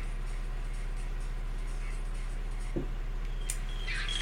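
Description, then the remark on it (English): A few short, high bird chirps arrive near the end over a steady low background hum, preceded by a single soft knock. “That's a bird.”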